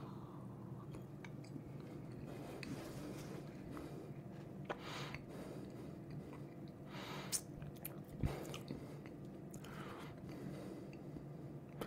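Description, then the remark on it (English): Quiet mouth sounds of someone sipping and tasting neat whisky, the first of three sips: a few soft slurps, wet smacks and swallows over a low steady room hum, with no talking. “So again, whenever I have whiskies, I have three sips to begin with, and that's with it completely and utterly neat.”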